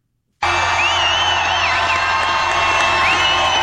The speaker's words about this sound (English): Oh, my fault. That was just natural That's sound. That's just crowd noise.